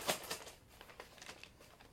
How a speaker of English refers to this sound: Put all my dice back in my bag. Don't throw them like CJ. Shake them up.